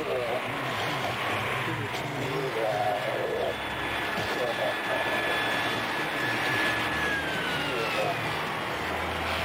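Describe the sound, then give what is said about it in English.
A chainsaw roars continuously in a film scene where the sidekick Raymond kills the lieutenant with it, a loud, buzzing motor whine whose high pitch drifts and wavers as it revs, with muffled voices mixed underneath. “So Raymond is his sidekick, is Geiger's sidekick, and he kills the lieutenant with a chainsaw. Great scene. And we get this wonderful noise from it.”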